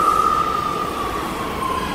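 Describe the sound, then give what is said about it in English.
A New York City subway train rumbles steadily and loudly, a thin high wheel squeal drifting slowly downward over the continuous roar, with no voices present. “New York City subway riders love Issues Etc.”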